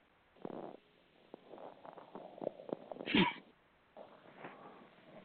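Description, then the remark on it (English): A single loud, sharp sneeze bursts out midway through, close and forceful, set among quieter muffled vocal sounds and soft rustling before and after. “And then the sound you make when you sneeze happens to be the same word that is told to us in Hebrew, which is Jesus' name, Yahshua.”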